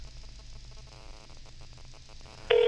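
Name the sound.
telephone call ringing through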